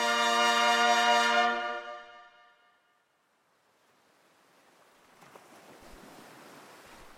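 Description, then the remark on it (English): A sustained musical chord fades out, then the soft, steady wash of waves breaking on the western shore of a pink and pale lavender sea rises gradually, unbroken, with no voices. “Along the western shores of Oceanus Calthumbrius, a lone figure in a reflective lime-green biosuit ambles up the coast.”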